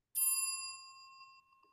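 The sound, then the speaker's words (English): A single bright bell rings once with a sharp strike, its clear metallic tone sustaining and slowly fading over a second and a half, heard alone. “If you haven't already, we're going to ring the bell again.”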